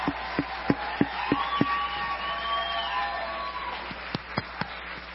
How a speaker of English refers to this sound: Amen. Praise God. Why don't you turn that hand clap into some praise? Give the Lord some praise tonight.